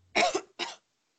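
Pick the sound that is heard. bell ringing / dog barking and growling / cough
cough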